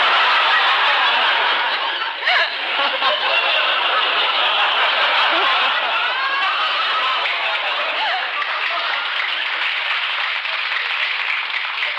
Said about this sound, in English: Well, I'm glad that the applause finally outweighed the groaning, eh?